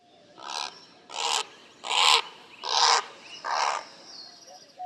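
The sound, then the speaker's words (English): A great blue heron calling in flight in Sonora, Mexico, gives five harsh, guttural croaks in a steady rhythm, each a rough, noisy burst, loud, with no other voices. “Here's a great blue heron in Sonora, Mexico, calling in flight.”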